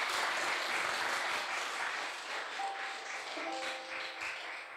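An audience claps for the Lord near the end of a church service in a dense, steady burst of applause that holds for several seconds and eases slightly toward the end, with a couple of faint sustained tones appearing late.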